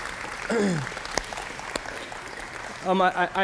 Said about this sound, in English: And so thank you, men and women, for serving us in the capacity that you do. Church, would you applaud them here?